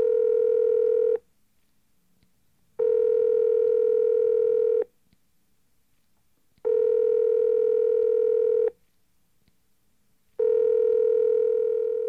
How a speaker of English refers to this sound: let me see if I can get Laren on the phone. Let's give her a call.